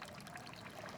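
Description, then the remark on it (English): Water pours and trickles steadily throughout, a continuous splashing wash of water streaming from a soaked man, with no voices. “There's water streaming from him, and there's water all over you.”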